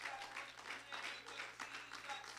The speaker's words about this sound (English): Can you clap your hands unto the Lord this morning?